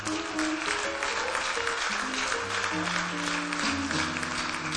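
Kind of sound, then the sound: crowd, audience clapping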